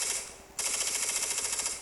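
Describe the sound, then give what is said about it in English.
Rapid gunfire from a rifle with a Rare Breed forced reset trigger, a fast, even stream of sharp cracks that blur into a rattling burst and jump louder after the first half second, with no voices. “Sounds like a sewing machine going at it. That was yours truly.”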